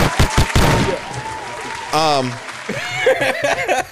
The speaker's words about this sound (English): But we are back. We're officially back. Hand claps for the pod. We are back.